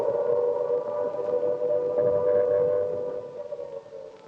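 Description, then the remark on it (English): A loud, sustained air raid siren wails steadily for several seconds over wartime London at night, its drawn-out tone dominating a rumbling background with no voices present. “And there's the wail of the Banshee.”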